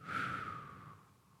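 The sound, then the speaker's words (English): A single slow, deep breath in through the nose and out through the mouth during a breathing exercise, soft and airy, gradually fading away over about a second and a half, with no talking. “We're going to be breathing in this way the whole exercise, this nice, easy, but deep breathing through the nose, in and out through the mouth.”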